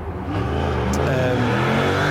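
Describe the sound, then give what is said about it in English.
A motorbike engine revs steadily and climbs in pitch as a man rides off on it, a continuous mid-range motor drone that stays loud throughout, with no voices. “Some guy's going off on his motorbike.”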